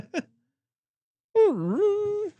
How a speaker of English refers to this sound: Shout out to Buddy snoring over there. Oh, that's Garth. Oh, wow. Okay. Dog Garth. Shout out to Garth. It's almost getting picked up by the microphones. It's that strong. It's vibrating the table.